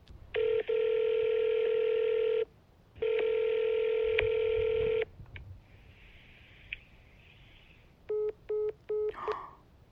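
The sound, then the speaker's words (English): A disconnected phone line, reached when calling a store chain's support center, gives two long, steady electronic tones of about two seconds each, then a quiet stretch and a quick run of three short beeps near the end. Nobody speaks. “A disconnected phone line.”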